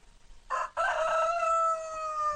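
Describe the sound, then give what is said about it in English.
A rooster crows loudly, a short opening note followed by a long drawn-out call that holds and trails off, with no voices around it. “Rue agrees. He doesn't like it. He doesn't want the white trucks. He doesn't want to have to stand in line for his chicken feed.”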